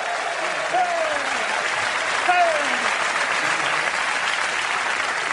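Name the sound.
big round of applause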